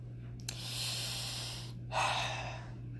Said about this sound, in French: Tu prends ce pattern de respiration-là